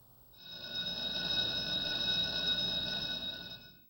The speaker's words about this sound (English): It's the tell bell. That means it's time for Did You Know?